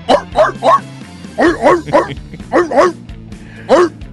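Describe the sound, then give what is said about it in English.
Dogs bark loudly in quick bursts, about a dozen yaps grouped in short clusters, with a low, steady tonal backing running underneath. “Oh, the dogs.”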